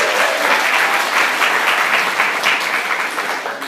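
A crowd at a morning worship service claps steadily and loudly, a dense, even wash of applause that holds for several seconds before easing slightly at the end. No voices are heard.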